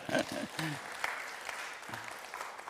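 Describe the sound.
A crowd breaks into steady applause, a dense wash of clapping that carries on throughout, with a voice or two calling out briefly over it.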